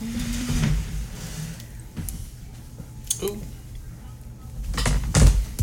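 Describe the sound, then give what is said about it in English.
A Microsoft phone gets yanked off a table by its cord, ending in a sharp clatter, after a few scattered knocks and rustles over a low background hum. “The almost cord. Yanked the Microsoft phone off the table.”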